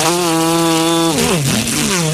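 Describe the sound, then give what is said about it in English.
A small gas engine drones steadily at a high idle, then bogs down and revs back up, a loud, buzzing two-stroke whine: a woman outside running a weed eater while doing yard work. “Because she loves going outside mowing the grass, getting the weed eater done.”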